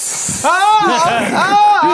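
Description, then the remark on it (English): A short, breathy hiss opens the moment, a voice mimicking a snake, before giving way to a louder voice speaking with drawn-out, sing-song tones. “For the snakes.”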